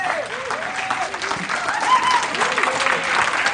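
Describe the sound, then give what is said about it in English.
A large indoor crowd stands and claps steadily and enthusiastically as a clap offering to Jesus, a dense wash of applause with scattered cheers and whoops rising over it throughout. “Why don't you just stand up and give Jesus a clap offering, shall we?”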